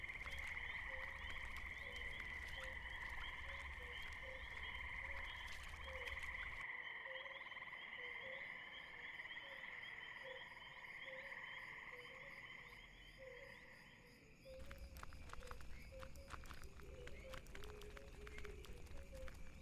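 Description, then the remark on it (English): A dense chorus of frogs croaks steadily and loudly for the whole stretch, layered calls overlapping in a constant pulsing drone, with a brief dip in background noise midway. No voices. “I really like frogs.”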